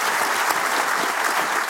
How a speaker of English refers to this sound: All right, look at these people. Yeah, round of applause for these people. You've been in it a while. Yeah, they're great.